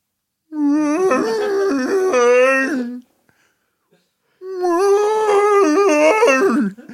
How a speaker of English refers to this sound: I had a record of a language of whale song that would be in rotation every once in a while